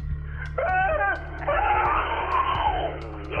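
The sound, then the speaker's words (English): A monstrous creature, a mutating man growing extra arms with his lower jaw split into five, screams in two loud, drawn-out bursts: a short warbling shriek, then a longer rasping wail that rises and falls, over a steady low hum. “His leg splits into 4 pieces, his lower jaw blasts into 5, and more teeth start growing out of every orifice. He starts to scream.”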